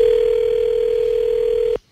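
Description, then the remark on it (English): A telephone ring tone heard over a phone line as the Seattle Seahawks call a player to announce the pick: one steady, fairly loud electronic tone holding for almost two seconds before cutting off abruptly into silence. No one speaks. “Then, well, they called him to announce the pick, and I need to get your opinion on, well, the results of this phone call, because I don't know how to feel about it.”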